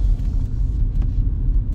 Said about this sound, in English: And currently I'm sitting behind bumper-to-bumper traffic, which means somebody probably wrecked or there's either a stalled car or probably a whole bunch of stuff going on.